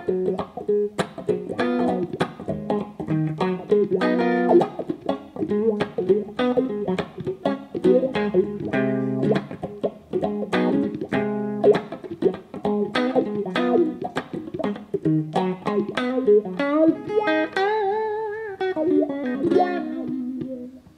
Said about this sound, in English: The Dunlop Slash Wah, man. It's just funky, man. I really like it. It has a distortion thing that I don't usually mess with, but it's a funky wah.